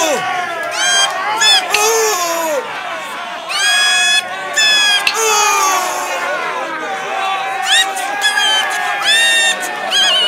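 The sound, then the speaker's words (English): A lively tavern crowd at night cheers and shouts over a steady babble of overlapping voices, with bursts of high whoops and calls rising and falling throughout. “Well, it's quite a crowd tonight, landlord.”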